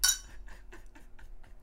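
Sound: wine glasses clinking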